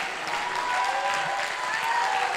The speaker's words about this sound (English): Well, why don't you stand and clap your hands unto the Lord and give God the biggest praise you've given him all night.